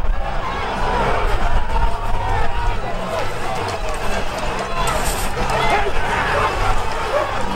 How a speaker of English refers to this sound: What you've just witnessed is the crowd of thousands overwhelming police. So what's happened right now is the crowd broke through the police line.